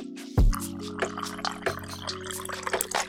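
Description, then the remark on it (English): Liquid pours steadily into a glass, splashing and crackling over ice cubes with a few sharp clinks, fairly loud for about three seconds with no talking. “Got the ice on deck. What we got next? The little sippity dippity on deck. Come on now. Come on now. Pull it in there. Pour it in there.”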